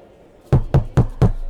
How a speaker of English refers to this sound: You go up the stairs and knock on the door.